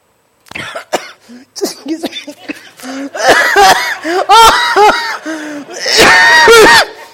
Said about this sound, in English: Oh, that was not meant to be that way. That was not a smoker's cough.